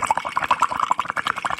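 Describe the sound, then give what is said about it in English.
Rapid, irregular bubbling of air blown through a straw into water, a steady stream of gurgling pops with no talking. “It's blowing in a straw in water.”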